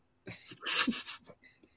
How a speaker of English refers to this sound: He's reached the age where a laugh turns into a cough. My cough sounds like static.